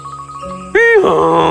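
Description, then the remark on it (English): A donkey brays loudly and harshly, starting with a high, wavering honk that rises and falls before breaking into a rough, raspy blast, following a quieter tonal backdrop. “The donkey was so pleased to see the animals praising him just as if he were King Lion himself that he could not keep from expressing his delight by a loud, harsh bray.”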